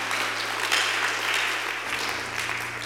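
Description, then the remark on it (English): A crowd claps steadily during a church service, a dense wash of many hands applauding together, sustained and fairly loud throughout, with a low hum underneath. “Because, clap your hands.”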